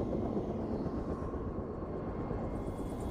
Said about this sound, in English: The helicopter drops Nick and I off a half mile from the bear to make the helicopter lighter and more maneuverable.